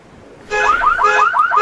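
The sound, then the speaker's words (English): A car alarm blares, a loud electronic siren warbling in quick repeated up-and-down sweeps that kicks in abruptly and keeps cycling steadily, with no one talking; it was set off when someone threw something at the car. “They threw something at my car. I'm trying to see what it was. They set the alarm off.”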